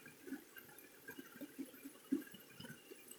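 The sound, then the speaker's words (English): Shallow, ankle-deep water of Rose River in the mountains flows and gurgles steadily around wading legs in the afternoon, with soft irregular sloshes and splashes rising above a low continuous wash. Fairly quiet, with no voices. “Reporting live, ankle deep, in Rose River”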